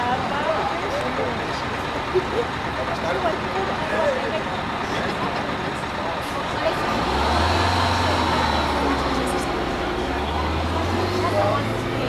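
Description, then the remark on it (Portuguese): A bus full of Chinese tourists rolls into the village of Nguva, its deep engine rumble rising and then dropping as it slows to a stop in front of a hotel, over a dense wash of crowd noise and indistinct voices as it is welcomed with drumming, chants and whistles. “Um autocarro cheio de turistas chineses entra na vila e é recebido com batucadas, cânticos e assobios. O autocarro para em frente do Hotel Capulana de Nguva.”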